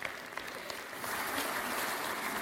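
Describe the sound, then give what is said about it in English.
An audience at a church service breaks into applause for a woman, starting with scattered claps and swelling into steady, dense clapping. “Now clap for her.”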